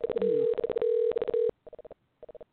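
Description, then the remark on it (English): An electronic telephone ringing tone on an outgoing call: a steady buzzing tone broken by brief gaps, followed by two quick clusters of short beeps as the call disconnects, clear with no talking. “Oh, it's ringing funny.”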